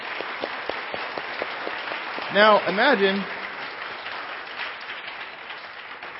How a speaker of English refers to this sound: Let's all clap together just as loud as we can. Now, loud as you can.